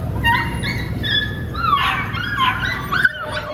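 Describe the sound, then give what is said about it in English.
A beagle puppy, one of 4,000 beagles being taken out of research testing, whimpers and yips in a run of high, wavering cries, fairly loud over a low background rumble, with no talking. “So today is the beginning of this epic work that we've done to get out 4,000 beagles, just like this little guy right here.”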